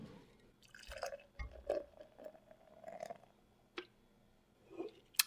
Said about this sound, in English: So I'm going to pour a little bit of the beer for myself here.